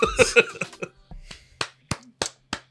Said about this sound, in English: People start clapping.